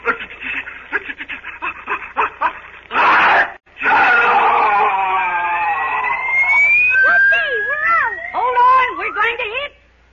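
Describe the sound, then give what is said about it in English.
The giant whale in Pinocchio sneezes, provoked by smoke from a piled-up fire: a stuttering, wheezy build-up, a sharp explosive blast, then a long loud roaring rush of air laced with wailing, swooping tones that trail off. “He'll sneeze any minute now.”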